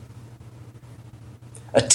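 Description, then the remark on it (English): After a stretch of quiet with a low steady hum, a single short, sharp sneeze bursts out right at the end. “Bless you.”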